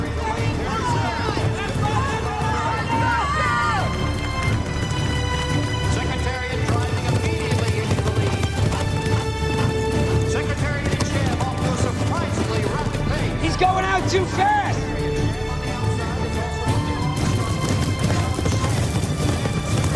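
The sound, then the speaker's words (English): Racehorses gallop in a movie scene recreating a real race, rounding the first turn in a fast, steady drumming of hooves, loud and continuous throughout, mixed with voices talking and a dense crowd-like background. “Horses now loaded in.”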